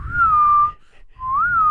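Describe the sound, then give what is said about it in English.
A clear human whistle in two phrases: a steady wavering note, a short pause, then a matching answering whistle, a family's call-and-response whistle used to find each other. No talking. “We did a family whistle.”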